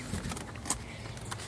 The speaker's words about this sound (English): Let me get out of my car and go a little closer to the Wi-Fi. Okay, so I'll try and do this standing.